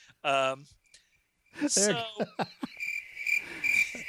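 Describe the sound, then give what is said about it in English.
A voice talks briefly, then a steady cricket chirping takes over, a continuous high, pulsing trill that carries through to the end at moderate loudness. “Jesus Cricket.”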